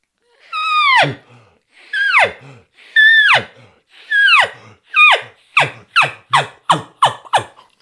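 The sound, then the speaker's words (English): A diaphragm elk call blown without a bugle tube as a series of high, falling squeals with heavy in-breaths between them: four drawn-out calls, then six quick, clipped ones speeding up. Loud, with no talking. “a diaphragm call. But Corey Jacobson talks about how to mess with that, where you're making a sound and then breathing in heavy”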